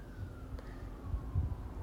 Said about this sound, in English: And as the sirens go by, here I am on Main Street. As the sirens go by, I pray for those being affected. I always do.